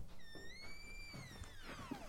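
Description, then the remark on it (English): A door that was not properly closed creaks slowly open, its hinges letting out one long, wavering squeal that bends downward at the end, with faint soft knocks underneath; quiet, with no voices. “I'll just kick down the door. Wait! It's not properly closed.”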